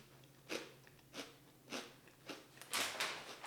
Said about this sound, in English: It's crunchy. Let me guess. It's a potato chip. Yes. Is it a kettle chip? Yes.